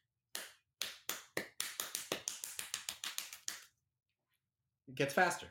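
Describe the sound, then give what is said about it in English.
A string of sharp knocks on a door, imitating how a drummer knocks, starting slow and steadily speeding up into a rapid, uneven patter, followed by a pause and then a voice speaking. “So this guy, he did a, it's like, it's almost kind of a take on that where it's this is how drummers knock on doors.”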